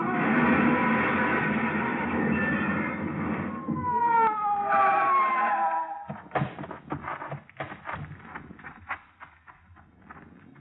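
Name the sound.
police car siren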